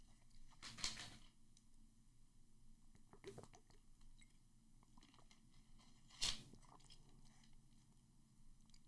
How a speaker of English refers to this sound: All right, my voice is cracked 5 times. I need to take a sip of water. Give me a second.